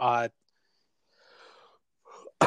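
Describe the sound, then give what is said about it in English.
A short vocal sound cuts off, then a man gives a couple of muffled, breathy coughs from something in his throat, ending in a sharper burst of noise. “Something in my throat. So he coughs away.”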